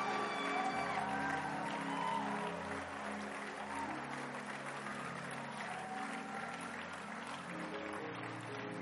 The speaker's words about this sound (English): Come on, keep clapping. Keep clapping for them. No, you are not clapping as much as I expected. Come on.